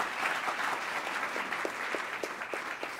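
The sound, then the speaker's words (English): An audience applauds a discussion panel in a steady, dense round of clapping that keeps a fairly even loudness for about three seconds, with a few sharper individual claps standing out from the crowd. “If you have, yes, please, round of applause. Yes, for our panel.”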